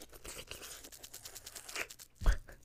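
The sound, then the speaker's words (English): Crinkling and rustling of thin rolling paper as someone rolls a joint, a run of soft irregular crackles and scratchy rubs that ends in one louder crunch near the end, with no talking. “rolling up behind the mic, you know what I mean? Like, all those sounds I hear”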